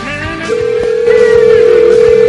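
Touch-tone telephone dialing during a radio show, heard as a loud electronic tone that holds steady with a brief break partway through, with a faint rhythmic background underneath and no talking; a phone number is being dialed to call a guest.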